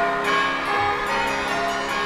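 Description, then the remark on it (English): A small bell rings out clearly with a bright, shimmering tone that sustains steadily and fairly loud throughout, with no voices present. “Though I've grown old, the bell still rings for me, as it does for all who truly believe.”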